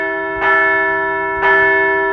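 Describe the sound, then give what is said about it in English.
A bell rings twice, about a second apart, each strike bright and sustained with rich overtones that hang and overlap before the next. Loud, with no voices. “We're going to ring the bell again because the Phillies are up 1-0 over the Atlanta Braves in the playoffs.”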